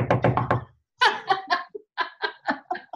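A voice imitates knocking with a quick run of four or five loud, evenly spaced knocks, then, after a short pause, two more rapid, forceful rounds of knocks.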